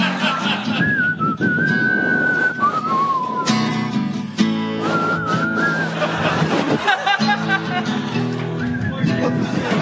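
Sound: person whistling a tune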